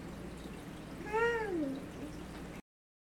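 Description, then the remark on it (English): A single drawn-out meow from a cat being stroked, rising then falling in pitch, clear over a steady low background hum, with no talking. “you're over there stroking your cat like your doctor.”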